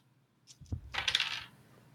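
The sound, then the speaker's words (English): Dice tumble onto a hard surface: a few quick clicks and a soft thud, then a short burst of bright rattling clatter that settles within about half a second. It's fairly loud, with no voices. “If you have religious doctrines, can you roll? Yes, go ahead. I can find the right dang dice.”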